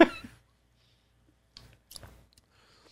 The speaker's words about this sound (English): Okay. That didn't work. I got to take another sip.